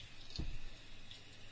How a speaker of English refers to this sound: Oh, wow. It's like a river down your street, bro. Yeah, dude. Oh, look, that's the thing. It's the manhole cover. Why is it coming up like that? I don't know.